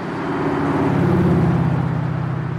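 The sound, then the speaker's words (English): A steady low rumble of city car traffic passing through a neon-lit square like Times Square on a crisp fall evening, engines droning and swelling slightly in the middle before easing, with no voices, just a continuous mechanical hum. “He stands in the glaring neon of a crisp fall evening as rivers of horseless metallic wagons trundle by.”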